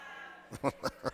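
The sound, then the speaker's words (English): A human voice imitates a sheep, giving three or four short, wavering bleats in quick succession, moderately loud, with no other talking. “Now that sounded more real right there.”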